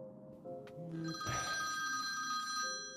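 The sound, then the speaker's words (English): A mobile phone rings with a bright electronic ringtone, sustained high-pitched melodic tones playing loudly and continuously over low background noise, with no one speaking. It is a call from a colleague at the office, left unanswered, while walking up a street away from Westminster Abbey. “Nope, I'm not going to answer that.”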